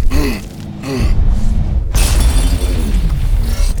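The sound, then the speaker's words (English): A loud sci-fi quantum cannon blast slams into an energy shield, with warbling, sweeping tones and a sudden bright crash of impact midway, followed by a sustained roaring, crackling wash of noise. “Quick, throw everything you've got before it shoots again!”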